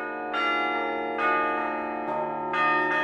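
Bells chime in a steady sequence, four bright strikes a few beats apart, each ringing out with long overlapping resonance that never fully fades, close and fairly loud with no voices.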